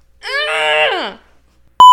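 A drawn-out, wavering vocal moan fades away, then after a brief pause a single short, loud electronic beep sounds sharply at the end.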